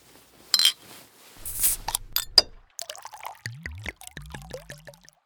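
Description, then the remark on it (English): Whiskey pours from a bottle, starting with a few splashes and clinks, then a steady run of hollow, rising glugs as the liquid flows out. “I might have taken a bottle or two of Mommy's whiskey. Ugh, a girl after my own heart. Pour it out, Princess.”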